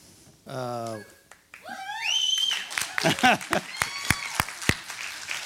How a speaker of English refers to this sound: I wasn't waiting for you to clap. I couldn't think of what to say.